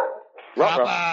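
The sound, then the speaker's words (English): A dog, Goomba, lets out a soft, whiny sound, then breaks into a loud, drawn-out bark with a high, ringing tone that holds to the end, barking because the mail carrier has arrived. “Oh, the mail person is here early today.”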